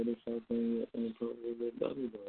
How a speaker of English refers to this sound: We got somebody that's talking in the background. If you could put your phone on mute when you're not playing the phone, just so the quality of so everybody can hear a little clear.